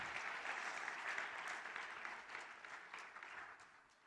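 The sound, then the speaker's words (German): A church audience applauds steadily during a sermon, a dense wash of many hands clapping at once that holds fairly loud throughout, then tapers slightly toward the end. “Gib ihnen einen Applaus.”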